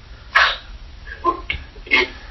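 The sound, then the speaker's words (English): A dog barks three or four times in quick, uneven succession, short sharp woofs over a low background hum, with no one talking. “Sorry, my roommate's girlfriend's roommate's dog is with us because that sounds really weird once I spell it out.”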